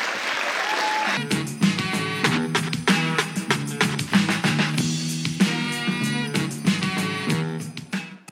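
An audience applauds steadily for several seconds for the winner of a game who wins a basket of goodies. The clapping is a dense wash that stays loud throughout, and a bright, brassy music sting joins in after the first second.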